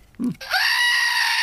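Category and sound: sound effect, screaming goat sound effect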